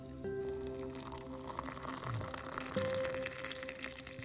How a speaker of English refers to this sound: Especially as I pour that first cup of coffee. It's absolutely delicious.